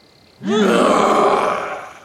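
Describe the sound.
A woman, standing straight with feet planted wide after a deep breath and with curled lips, lets out a loud, sustained primal roar imitating a wild animal, starting with a rising, throaty growl and holding a harsh, raspy tone for over a second and a half before tapering off.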